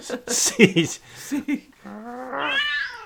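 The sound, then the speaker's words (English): A cat named Carlos lets out a drawn-out, displeased growl that rises in pitch and swells louder, coming right after a short burst of human talk, clear. “Oh, you don't like this show?”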